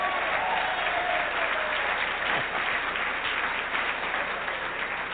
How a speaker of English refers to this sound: Well, go ahead and clap then. Don't patty cake, go ahead and do it.